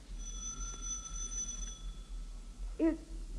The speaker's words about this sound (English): He stops, reads a stenciled inscription on it, and then angrily enters an apartment building and rings a doorbell marked Superintendent.